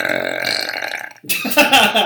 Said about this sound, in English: Like, hey, listen to this podcast I'm on. It's mostly a guy burping.